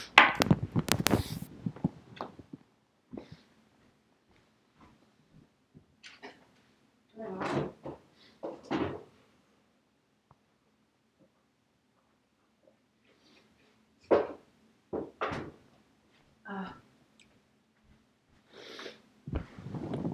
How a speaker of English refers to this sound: Okay, I'm back. You probably heard me cough up my phlegm.